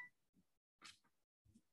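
electronic beeping

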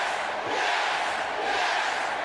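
wrestling crowd cheering

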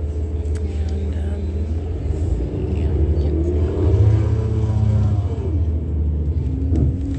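bus engine rumbling

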